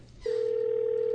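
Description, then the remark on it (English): A steady telephone dial tone as a phone call is placed, beginning abruptly after a brief moment of quiet room noise and holding at an even, fairly loud level, a single unbroken electronic hum with no talking. “Do you want to call him up? Yeah, call him up.”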